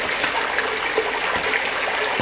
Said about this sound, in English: Just rain. It's rain. White noise.